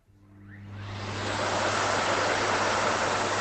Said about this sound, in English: And the hairdryer.